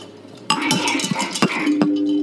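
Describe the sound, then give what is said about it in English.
Glasses clink together in a toast three times in quick succession, sharp bright taps, the last one leaving a short ringing tone, with no talking. “I'm gonna drink to that, dude. Where are you? Clink. Clink, clink, clink.”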